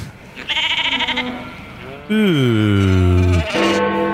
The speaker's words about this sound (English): Cows sort of sound like Louis Theroux.